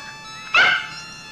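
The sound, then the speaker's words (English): A dog bursting in through an opened apartment door gives one sharp bark that rings briefly before fading, heard alone against a faint steady background hum. “But the second she opens the door, the landlady's dog busts in, causing her to drop it to the floor.”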